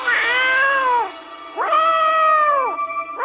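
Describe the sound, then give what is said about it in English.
A cat put in a tree in a TV show yowls twice, each cry a long, drawn-out wail that rises and then sags. The second is longer. Both are loud, with no talking. “But yeah, the first thing he does, is he puts a cat in a tree and the cat yowls for, I would estimate, about 10 minutes straight.”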